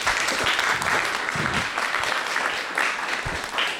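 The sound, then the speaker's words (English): Sustained audience applause for the evening's host and moderator, a dense wash of many hands clapping at a steady loud level for several seconds, with a few occasional whoops or cheers mixed into the crowd noise. “Please, a huge round of applause for our host and moderator for the night,”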